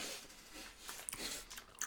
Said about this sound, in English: If I die eating Skittles, it's all right. This episode is going to take longer just because we're chewing.